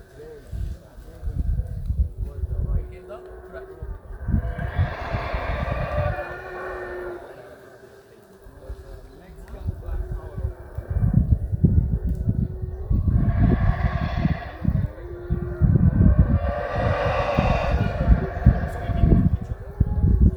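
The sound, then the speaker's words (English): Deep, rasping roars from angry black Mexican howler monkeys in the trees, recorded from the top of the Shunan Tunic Mayan ruins, swell and fade in several long, overlapping bouts, a growling chorus with rough low rumbles and harsher upper tones, loud throughout with a brief lull midway. “The following recording is 20 seconds of some angry black Mexican howler monkeys.”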